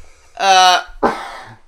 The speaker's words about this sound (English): You just coughed your handkerchief away from you.